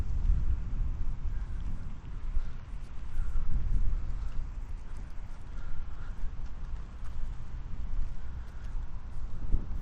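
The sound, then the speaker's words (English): Steady, heavy wind buffets 3D microphones outdoors at a golf course in Brampton, a constant low rumble with gusty surges throughout and no clear voices. “Ooh, it's windy.”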